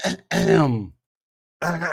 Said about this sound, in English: Clear your throat. Let me clear my throat.